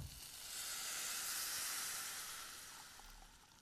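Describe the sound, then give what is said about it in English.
A steady stream of 2.5 cups of water pours into a microwave-safe glass bowl, a bright, hissing rush that swells and then gradually thins out over a few seconds, with no talking. “And we'll add 2.5 cups of water to this.”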